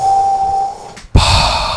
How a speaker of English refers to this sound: Awful! It's awful. It sounds like it is not that bad. Trouble breathing, right? He does have trouble breathing.